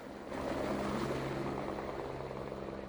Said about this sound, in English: After the requisite safety talk, the passengers board the waiting helicopter and the pilots fly them to their destination.